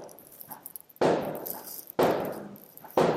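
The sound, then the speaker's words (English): Three sharp gunshots ring out about a second apart, each with a long echoing tail, over a quiet background with no talking. “You know what's not helping me relax is the sound of gunshots, over my shoulder.”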